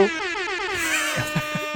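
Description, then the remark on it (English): A loud, blaring air horn sound effect, played by pressing a sound effect button, rings out in one sustained, brassy blast lasting under two seconds, with a slight wavering pitch and no talking over it. “I found the air horn button.”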